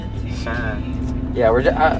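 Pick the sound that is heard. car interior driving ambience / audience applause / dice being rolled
car interior driving ambience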